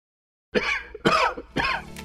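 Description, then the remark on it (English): A person coughs three times in quick, evenly spaced bursts, fairly loud, each one rough and throaty, after a brief moment of silence. “Cold and cough season is here.”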